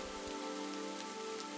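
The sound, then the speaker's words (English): Soft, steady rain patters continuously on a surface, a gentle even hiss with faint scattered drops, fairly quiet and unbroken, with no voices. “It's still raining outside. And so I get soft rain because it's not hard rain today.”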